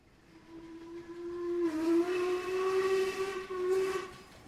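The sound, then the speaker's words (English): A steam engine's whistle blows one long, steady note, growing louder partway through as a rush of hissing steam joins in, then holds until it tapers off near the end. “At the dawn of the Industrial Revolution, newfangled steam machines began to chuff heat into work and science into profits.”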